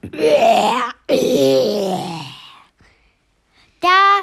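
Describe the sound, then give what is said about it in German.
A voice imitates a leopard in a story burping back at a boy named Lopi: two long, loud, groaning belches back to back, then a pause and a short, higher burp at the end. “Und der Leopard rülpste zurück.”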